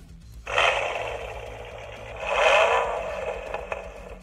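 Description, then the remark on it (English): A Ford Mustang engine sound from the book What Cars Say roars to life with a harsh, tinny growl, swelling into a second louder rev before settling into a rough, steady rumble. No one speaks. “You want to know what a Mustang sounds like?”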